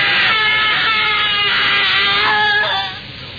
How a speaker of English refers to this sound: The screaming had ceased a moment before we gained entry.